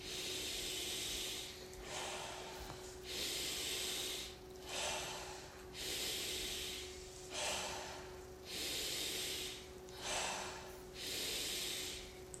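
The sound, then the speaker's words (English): Deep, forceful breaths repeat in a steady rhythm, about nine rushing inhale-exhale cycles of a Wim Hof method breathing round, fairly loud over a faint constant hum, with no talking. “You'll hold for 15 seconds, and that is a round of Wim Hof method. Quite clear? So start breathing with me.”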